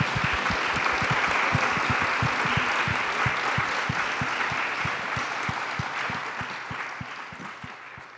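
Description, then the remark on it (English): An audience claps steadily for several seconds, thanking the speakers after a talk at ACCA, the Australian Centre for Contemporary Art in Melbourne: a dense crackle of many hands with a few sharp individual claps standing out, slowly tapering off toward the end. “Please join me in thanking our speakers”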